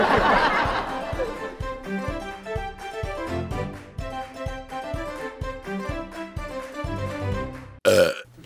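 A long, deep, rumbling burp rolls out, followed by several seconds of rhythmic, pulsing belching with a throaty, tonal quality, then a short, sharp burst at the end.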